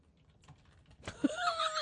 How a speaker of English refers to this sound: just typing away